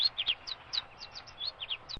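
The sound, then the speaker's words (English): A rapid string of bright, high chirps from a finch, about a dozen quick notes in two seconds, clear with no talking. “Now then, using your expert knowledge of bird sounds, is that a finch or a starling? I've literally no idea. Well, of course you have. That's the point of it. Come on. A finch? Yes, you're right.”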